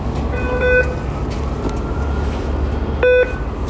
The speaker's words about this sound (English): So you heard the beep. That means that I tap my Orca card. That's basically how you pay your fare. You tap on, and then when you get to your stop at the end, you tap off.